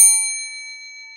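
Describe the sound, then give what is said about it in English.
A single bright ding from a small bell, struck once and left to ring, its clear metallic tone fading slowly over about a second with no voices present. “Yeah, the bell. It's back. I bought it. I'm going to use it.”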